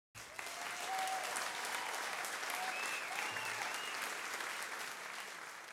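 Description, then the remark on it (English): A steady round of applause from a crowd celebrating graduates who earned their degrees during a pandemic lockdown, dense clapping that fills the whole stretch at an even loudness, with faint whistles or cheers rising above it now and then. “So let's give a round of applause for everyone out there crushing those degrees in a less than optimal situation.”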